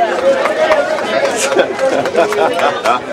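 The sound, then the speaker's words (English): A steady hubbub of crowd chatter at an event where the mayor, city council members and Lance Armstrong arrive for a bike ride, many overlapping voices talking at once with no single speaker standing out, fairly loud and continuous throughout. “Wheeling his bike in on the back wheel so he can maneuver through the crowd.”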